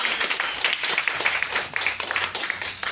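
Audience applause, a dense wash of many hands clapping steadily at a fairly loud level for about three seconds, with no voices standing out.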